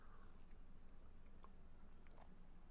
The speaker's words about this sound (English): I'm going to take a sip of it, then I'll tell you what it is, okay? So if you're drinking a beverage too at the time, let's take a sip together.